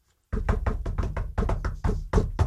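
A rapid series of loud knocks on wood, about ten sharp raps in quick succession with a steady rhythm, heard alone without any talking.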